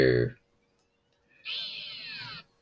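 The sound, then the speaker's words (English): A brief loud burst opens, then after a pause comes a single meow-like synthesizer swoop in a title sequence theme, a bright, bending tone lasting about a second before cutting off cleanly. “So this is your first title sequence, isn't it? This is like, yes, the Peter Howe kind of meow.”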